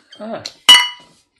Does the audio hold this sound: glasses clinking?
yes